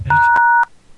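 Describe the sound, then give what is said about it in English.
A phone keypad tone after the hash key is pressed on a call screened by a BT call-screening service: one steady, loud electronic beep lasting about half a second, punctuated by faint clicks, with a brief low rumble at the start. “Please say your name after the tone, then press hash and wait to be connected.”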